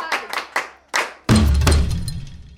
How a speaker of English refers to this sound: That's very good. Class, clap for him again.